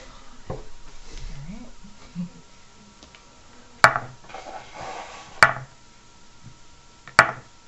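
Heavy dice are rolled during a tabletop game, thudding and clacking onto a table in four sharp, separate knocks spaced irregularly. The later knocks are loudest, with faint murmuring voices in the background between them.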